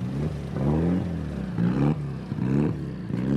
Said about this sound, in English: Over on the other side of the service area, another car has come back in off the stages. This is the car belonging to Gus Carney, the father of the children named after racing drivers.